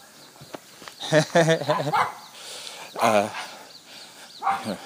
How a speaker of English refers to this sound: There's only a thin thread of fence between myself and the vicious miniature dog.